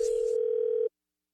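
A steady, loud telephone dial tone, heard before a prank call to a public library, hums at a single unwavering pitch for just under a second, then cuts off abruptly into silence.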